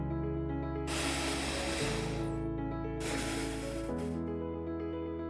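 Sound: deep breath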